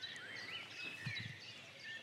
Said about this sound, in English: It's 4 in the morning. I've woken up in the beaver enclosure and I can see one swimming around in the pond by the lodge. Near the cuckoo there in the background.